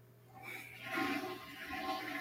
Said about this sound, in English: And a flush. Well, that was a magical of doom. That's a magical flush right there.